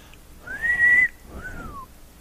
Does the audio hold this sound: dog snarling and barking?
no